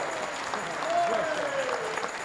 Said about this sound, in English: Praise the Lord! Hey! Give him a clap! Come on, come on! Hallelujah!